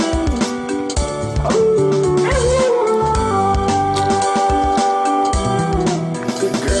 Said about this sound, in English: I won't play all of it because obviously the sort of howling dog is sometimes a bit much, but that is Mishka, who is a husky, obviously a very clever husky